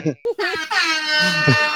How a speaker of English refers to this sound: Oh shit! Who has the air horn? Yeah, that's me. Great.